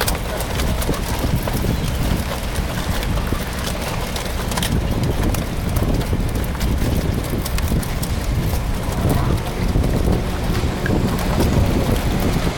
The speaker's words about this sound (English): This is some great clackers clacking